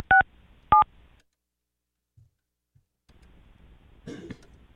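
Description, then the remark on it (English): Two short, clear touch-tone dialing beeps sound close together as someone calls a person again, followed by near silence and a brief muffled cough-like noise near the end. “Tried to call. Calling again.”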